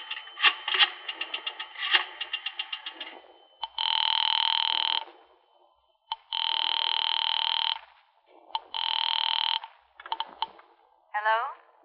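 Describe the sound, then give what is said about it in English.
A burst of rapid dialing clicks as someone dials out on a house telephone, then three long, steady ring tones heard through the telephone line, each lasting over a second with short gaps between them. “Mind if I use your telephone?”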